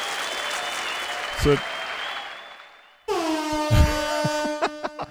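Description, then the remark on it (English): A steady burst of crowd applause congratulating the guitar pedal maker Bolt and Forge Analog Audio fills the first three seconds, then cuts to a loud blaring air horn with several short, sharp honks at the end. “Deserves an extra round of applause.”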